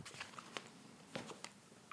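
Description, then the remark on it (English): A pet named Moose walks, its claws clicking on a hard floor: five or six light, sharp taps in an uneven rhythm, faint and with no voices. “I can hear the clicking when you walk on the thing.”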